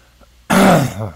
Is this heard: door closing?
no